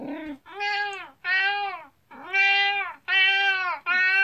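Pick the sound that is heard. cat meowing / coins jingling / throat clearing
cat meowing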